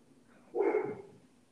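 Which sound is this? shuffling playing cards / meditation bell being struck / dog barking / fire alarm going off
dog barking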